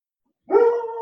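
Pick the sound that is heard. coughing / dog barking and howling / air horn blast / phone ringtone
dog barking and howling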